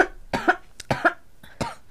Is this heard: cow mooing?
no